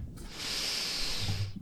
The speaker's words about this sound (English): How's your mic smell? Hold on, wait. Actually, let me do an actual sniff.